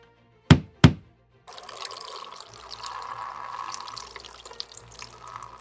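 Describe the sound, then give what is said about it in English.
Two sharp clicks, then a steady stream of lighter fluid pouring and splattering onto a table, close up and continuous for several seconds with no talking. “There's no need to pour lighter fluid on that table.”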